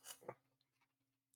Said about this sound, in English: Sorry to chew with my mouth open.